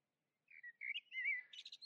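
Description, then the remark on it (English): Birds chirping in garden trees, a quick run of high, bright tweets and warbles that quicken into a rapid trill near the end, soft with no voices. “And you notice that the trees provide a haven for the birds.”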